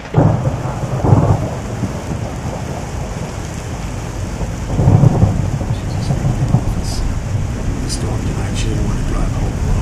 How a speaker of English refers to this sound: Look, help me set up some buckets to catch the rain before you go. This roof, you know...